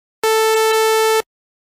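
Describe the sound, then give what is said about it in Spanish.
A steady synthesizer tone from a triangle-wave oscillator sounds at one fixed pitch for about a second, starting and stopping abruptly, loud and clear with no other sounds around it. “La triangle wave, que es la onda triangular.”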